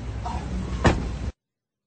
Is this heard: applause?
no